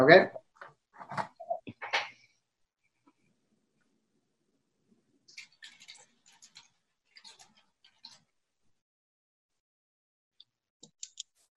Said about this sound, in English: Typing it up right now, Mr. President.